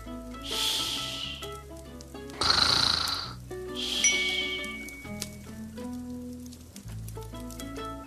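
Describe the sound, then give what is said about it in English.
Slow, rhythmic snoring from a sleeping bear, three rough, breathy snores about a second and a half apart, heard over soft background music with no talking. “But the bear snores on.”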